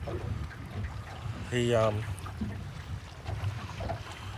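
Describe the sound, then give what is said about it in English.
A boat motor drones steadily across open water as the boat heads around an island, kept off the sand flat despite a king tide, with wind and a brief tonal burst partway through rising above the low rumble. “Over there, he'll be going around that island.”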